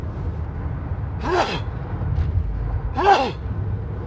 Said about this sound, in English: And I'm going to sneeze, so excuse me.